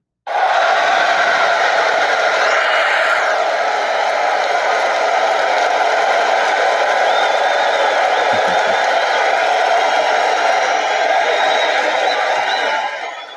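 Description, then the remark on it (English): An audience applauds and cheers without pause for about thirteen seconds, a loud, dense wash of clapping with whoops rising above it, then it starts to fade at the very end. “Thank you, thank you, thank you for the applause.”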